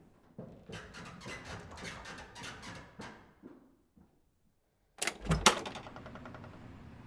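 door being opened

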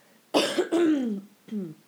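cough

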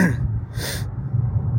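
coughing and throat clearing

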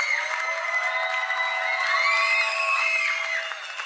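crowd clapping and cheering

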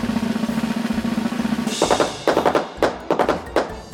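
firecracker exploding

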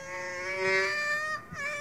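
donkey braying

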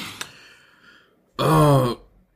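burp

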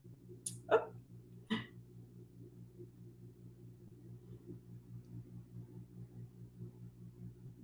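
dog barking

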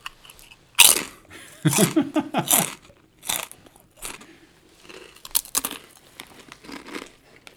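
crunching kettle-cooked potato chips

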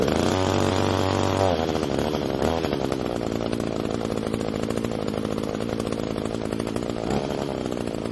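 chainsaw running

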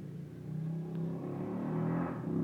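cars driving by outside

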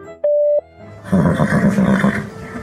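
voicemail beep tone

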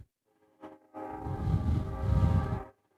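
train horn

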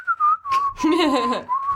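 person whistling a tune

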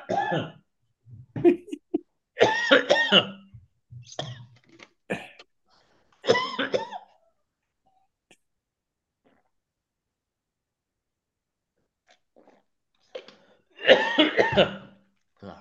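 coughing and throat clearing

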